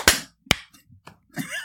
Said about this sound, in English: Everybody claps after me. I feel like it's like visually it looked good.